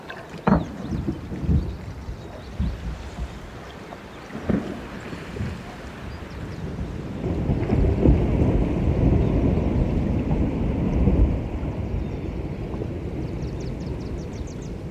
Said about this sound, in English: Bernie Krause, who recorded these marine mammals, also caught the sound of a glacier calving off an iceberg.